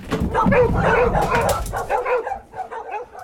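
Several dogs bark, yip and whimper at once in a loud, overlapping flurry that carries on for a few seconds before thinning into softer whines.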